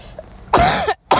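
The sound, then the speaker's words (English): Two harsh coughs from one person, the first a longer rasping burst and the second starting right after a brief pause, with no talking around them. “It's Tuesday, and I'm still coughing and choking.”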